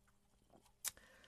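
A quick sip of Waterloo sparkling water: soft wet mouth sounds, then one sharp fizzy slurp and a faint swallow. No one speaks.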